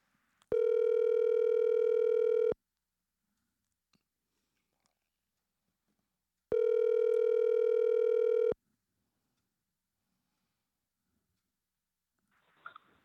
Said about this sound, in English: All right, let's dial the phone.